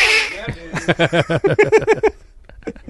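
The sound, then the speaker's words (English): A person imitates Donald Duck's squawky, garbled quacking voice, a rapid run of about a dozen loud nasal bursts, after a brief breathy hiss at the start. “can anyone in the room do a Donald impersonation?”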